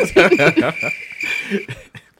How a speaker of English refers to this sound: Crickets.